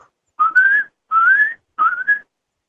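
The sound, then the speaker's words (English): A whistled imitation of a hermit thrush song: three clear, sustained whistled phrases, each gliding slightly upward in pitch, separated by short silences, with no talking. “Was a hermit thrush, and another one, and another one.”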